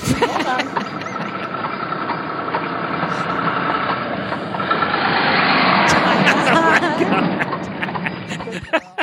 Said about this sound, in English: A tractor-trailer truck came by